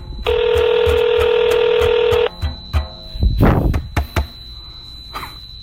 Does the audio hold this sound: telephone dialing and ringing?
yes